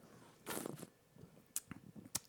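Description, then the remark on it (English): A big sip from a beer bottle: a soft, breathy slurp lasting under a second, then quiet swallowing noises and a couple of sharp little clicks. Faint overall, with no talking. “That was a big ass sip, man.”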